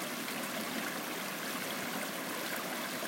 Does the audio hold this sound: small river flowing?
yes